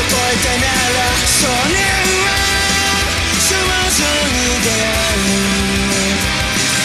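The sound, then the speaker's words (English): A loud, dense rock song plays throughout, driven by heavy full-band instrumentation while a gritty, growling vocalist yells over the top with raw, shouted energy. “It's just that energy, the vocalist yelling.”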